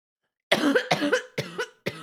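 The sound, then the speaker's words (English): Four harsh, rasping coughs in quick succession after a short silence, fairly loud, each burst sharp and breathy with no talking, after a hit from a cannabis dab. “Yeah, that's what happens when I smoke. Some of us just cough, okay?”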